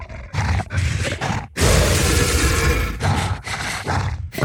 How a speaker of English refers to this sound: But yeah, pitch down, I really didn't have to do a whole lot of processing on those recordings. They kind of had a natural kind of rasp and growl that you tend to want out of a creature source layer.